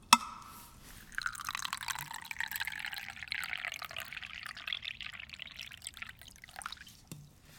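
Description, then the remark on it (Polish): Tea pours from a thermos filled that morning, in a chilly church, in a steady splashing stream for several seconds, its tone rising as the cup fills, then tapering off. A small knock comes at the start, and no one speaks. “Ma pan jeszcze trochę tej herbaty? Pełny termos zrobiłem rano.”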